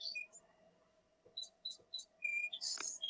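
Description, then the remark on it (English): A bird clock's hourly electronic bird-song chime: a run of short, high chirps and whistled tweets in quick repeated bursts, moderately quiet, over a faint steady hum with no one talking. “We have a clock in this room that every hour different bird sounds.”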